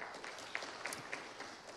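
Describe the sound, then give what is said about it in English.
An audience claps to show they have heard of the Gallup-Clifton StrengthsFinder, breaking into a steady, dense patter, many hands overlapping into a soft, even roar with a few sharper individual claps standing out. No one speaks over it. “And while we're doing that, will you clap if you've ever heard of the Gallup-Clifton Strengths Finder?”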